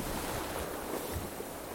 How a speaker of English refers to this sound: With a blue sky and in strong winds between the Canary Islands, we heel now and reach away as the log shows our speed easing above 9 knots.